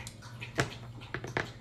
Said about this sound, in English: The dog's drinking.